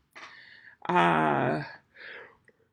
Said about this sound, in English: Excuse me. Gosh, I got a nap in beforehand, so I wouldn't be tired, and I feel like all I'm doing is yawning.